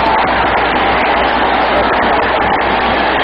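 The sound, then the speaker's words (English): A stadium crowd of almost 63,000 fans at a Jets–Raiders football game roars loudly and steadily as the Jets defense takes the ball from the Raiders, a dense wash of cheering noise that holds at full volume for a few seconds without letting up. “Listen to this crowd.”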